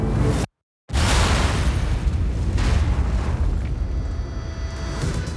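A huge blast of 13 barrels of TNT exploding in a hidden tunnel beneath a highway under Falcone's passing convoy: a short burst, a split second of dead silence, then a massive, deep, rumbling roar that rolls on and slowly fades. No voices.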